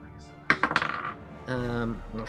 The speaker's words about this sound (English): Wow, I rolled 2 4s.